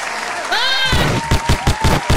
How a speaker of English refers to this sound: Oh my gosh, hand claps for being able to relate.